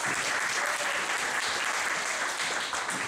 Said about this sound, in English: Thank you for helping me out. Nicely done. Give another big round of applause.